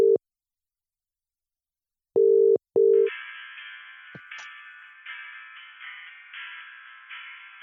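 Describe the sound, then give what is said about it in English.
Short electronic beeps sound, a single one and then a quick pair, before a buzzy, steady telephone ringing tone of an outgoing call to a migrant advice line takes over and pulses on at a moderate level with no one speaking. “You could try ringing Migrant Advice Line.”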